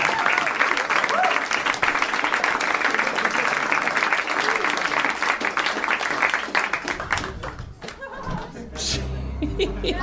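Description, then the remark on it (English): Sustained audience applause fills the space, a dense wash of clapping with scattered laughter mixed in, tapering slightly near the end as a low murmur of voices rises underneath. “Quickly, before the applause ends.”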